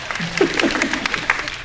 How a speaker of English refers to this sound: The other thing too, thank you, that's one applause. I just need 20 more to win this.